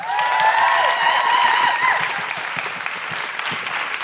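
A room full of people claps loudly and steadily, with whoops and cheers rising over the dense applause at first, then the clapping carries on a little softer with scattered shouts.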